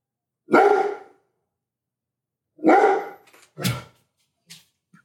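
A dog barks loudly, two full barks spaced about two seconds apart followed by a sharper yip and a faint trailing sound, with no talking.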